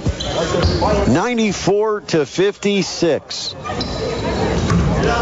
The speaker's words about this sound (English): We're down to 8 seconds. Ezekudo on the dribble, guarded closely by Taylor.